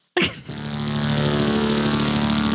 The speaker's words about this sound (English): It's maybe the fattest, wettest sound on the whole album. And here it is. It's just pretty fat and wet. Do it again. When you play just the center. Big electronic fart.